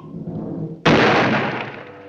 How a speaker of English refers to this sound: Luckily, Little Red Riding Hood found a large firecracker left over from the 4th of July. So she lit it and tossed it right out where he was.